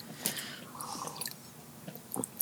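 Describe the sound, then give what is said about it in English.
Soft mouth sounds of someone sipping a drink: a few wet clicks and a brief slurp, followed by quiet swallowing noises. The sounds are faint, with no talking. “Gotta keep my voice hydrated.”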